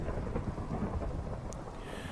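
Steady rain hisses without a break while a low, rolling rumble of thunder runs underneath, fairly quiet overall. No one speaks.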